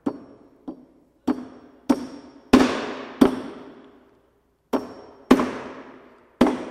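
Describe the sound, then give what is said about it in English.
A hammer drives a nail into wood with about nine sharp, ringing blows at an uneven pace, each strike loud, with a brief pause partway through. No one speaks. “Do you want to just drive that nail in with that hammer?”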